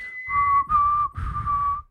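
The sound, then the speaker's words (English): A person mimics police whistles with three sustained, shrill whistle blasts in quick succession, fairly loud, with breathy rumble beneath and no talking. “You hear a bunch of whistles.”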